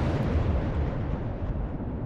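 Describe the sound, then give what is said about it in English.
A diner explodes after a lit cigarette is flicked into its kitchen: a loud explosion roars as a deep, continuous rumble with crackling texture, holding steady for about two seconds and tapering slightly at the end. No one speaks. “Oh, no! The diner explodes.”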